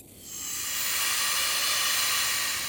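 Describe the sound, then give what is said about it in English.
Steam hisses steadily from a gash about 1 foot wide across stone, swelling up in the first half second and then holding as a continuous, bright, airy rush. No voices are heard. “And it starts to slowly fade away as small bit of steam got up from the just about 1 foot wide gash across the stone.”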